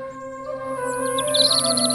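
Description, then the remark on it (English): Birds chirp in quick, repeated high tweets that grow busier halfway through, set against a steady, even drone in the background, at the start of summer in June. No voices. “Birds chirping, insects buzzing, the start of summer, children playing, summer brides having their wedding, the mowing of the lawns.”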